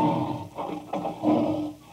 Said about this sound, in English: It's funny, I could swear that sounded like a lion. A lion.